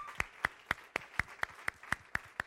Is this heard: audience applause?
yes